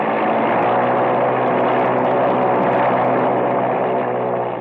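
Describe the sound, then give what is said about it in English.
A propeller aircraft engine revs up and roars loudly, a dense, steady drone with a throbbing hum underneath that holds its full power throughout, with no voices. “Well, she revs up okay”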